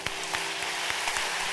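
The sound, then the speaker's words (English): A church crowd applauds its pastors steadily, a dense wash of clapping with a few sharper individual claps standing out above it. There is no speech, and the applause keeps a fairly even loudness throughout. “Clap for them again.”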